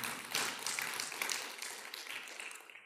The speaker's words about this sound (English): That is what we are for. You guys can clap. Amen.